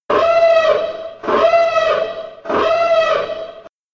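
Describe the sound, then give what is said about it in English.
A siren-like sound effect used as a spoiler warning wails three times in a steady rhythm, each loud, rising-and-falling tone lasting over a second with strong harmonics, then cuts off abruptly. “So, yeah, here is the spoiler siren.”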